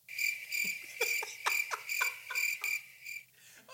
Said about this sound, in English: Hey, hit that crickets button. Crickets, guys.